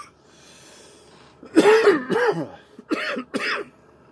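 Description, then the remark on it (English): A loud fit of coughing during a broadcast: one harsh, drawn-out cough followed by a rougher one, a short pause, then two quick hacking coughs, with faint background noise between. “Sorry for coughing during the broadcast, but it's kind of par for the course in this community.”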